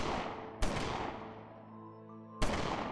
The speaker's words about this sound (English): Hours later, as night fell over Jonestown, the workman Stanley Clayton heard gunshots ring out.